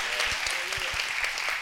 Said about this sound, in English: Oh, somebody ought to clap your hands real big on that.